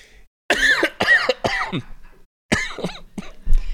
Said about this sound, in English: What a time to cough.